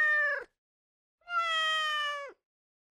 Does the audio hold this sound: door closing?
no